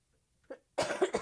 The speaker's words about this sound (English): I'm sorry, my cough button once again doesn't seem to be working.